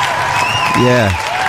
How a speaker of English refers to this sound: Anyway, a big round of applause. Ah, we just love it. Well done, guys.